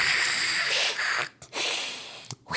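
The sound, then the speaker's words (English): A person imitates an alligator's hiss, pushing out long, breathy, airy bursts of hissing noise, with two short pauses breaking the sound into three loud sprays of air. “I don't know what noise gators make. They hiss.”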